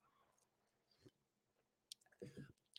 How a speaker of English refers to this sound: I'm just going to sip my coffee and listen about Koa Coffee.